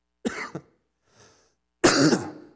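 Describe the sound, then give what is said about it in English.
A preacher with a lingering cough gives a loud double cough during a sermon, then a faint rasp of throat clearing after a short pause, followed by another harsh, longer cough. No talking. “If you know a way to help me get rid of this cough, tell me.”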